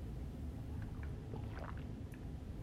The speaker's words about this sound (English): More like a gulp of that tea.